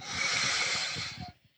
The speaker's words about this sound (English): Big deep breath.